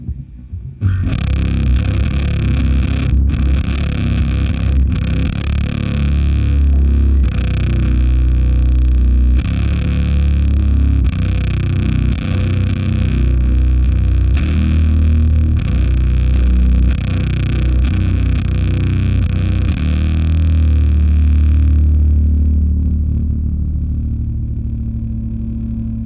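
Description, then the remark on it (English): A heavily fuzzed electric guitar, played through a Terminal fuzz distortion pedal, plays thick, saturated notes with a buzzing, gritty tone, ringing out loud for about twenty seconds with long sustain before fading. “So I got to hear what this Terminal sounds like. Yeah, okay. this is what it sounds like.”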